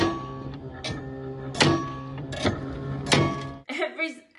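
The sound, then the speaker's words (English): The windshield wipers of a school bus sweep in a steady rhythm when it rains, four swishing thunks under a constant humming drone, before a voice briefly speaks at the end. “Windshield wipers.”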